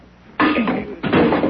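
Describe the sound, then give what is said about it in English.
Two loud, rough blows against a wooden door, each followed by a brief scraping rattle, as someone taps to break the door loose. No voices. “One more tap and the door will come off.”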